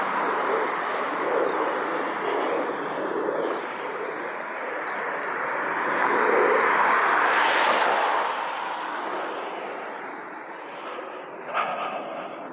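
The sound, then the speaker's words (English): Loud, steady roar of cars on a snowy, slushy street in New Jersey, with one car hissing past midway through as the noise swells and then fades. No one speaks. “And damn, these cars are loud.”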